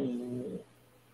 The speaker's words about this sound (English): Is that the dog snoring? Yeah. He's a bad co-host.